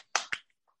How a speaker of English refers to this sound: A little round of applause. Yes, very fun. Oh, I didn't. I kind of heard you clap. I guess it didn't register.